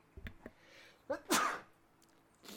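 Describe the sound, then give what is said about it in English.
A single sharp sneeze, a quick gasping intake followed by an explosive, breathy burst, loud against a quiet background with a few soft clicks before it. “Bless you.”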